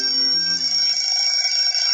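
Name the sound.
alarm clock ringing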